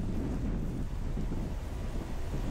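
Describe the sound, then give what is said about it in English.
Strong storm wind roars steadily in Tampa, Florida, as a storm nears landfall on Florida's southwest coast, a loud, continuous low rumble with gusty buffeting against the microphone and no voices, as rain starts to come in. “The first part is that we're seeing the wind, and you can see that rain is starting to come in, but this is not what we expected to see.”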